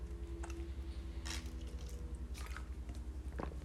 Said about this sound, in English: And currently that is the coffee I'm sipping on right now.